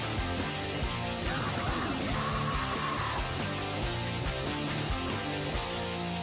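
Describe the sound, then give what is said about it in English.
Dense, loud heavy metal with distorted guitars in chunky riffs and pounding drums, topped by a sustained screamed female vocal, screaming "Joy will come", that rises and holds over the final riffs as the song ends. “My favorite thing about this song is that what it ends on is her screaming, and I had to look this up because I was just like, what is she ending that on?”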